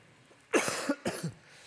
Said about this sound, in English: Now, unfortunately, I'm a little bit under the weather myself, so I may cough a few times today and startle you. So if you're falling asleep, I'm going to time my cough just right.